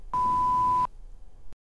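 A single loud, steady phone beep holds for under a second, then cuts off abruptly, leaving a faint low background hum with no talking.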